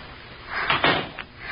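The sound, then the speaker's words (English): A door is pushed shut with a short scraping thud, followed a moment later by a smaller click as it settles. No one speaks. “Please close the door when you go out.”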